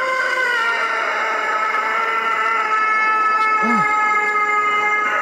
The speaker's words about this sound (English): That is a real rooster. Going around online, it's this rooster in Brazil. It sounds like it's in a garage. It looks like it's in a garage, like some kind of a mechanic shop or something like that. But listen, that's real.